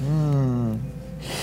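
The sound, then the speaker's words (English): A short voiced hum fades out, followed by a quick, sharp, breathy intake of air through the nose, moderately loud, like a single sniff at a musky-smelling object. “The number of different substances that your nose has sniffed, has huffed like that, is countless.”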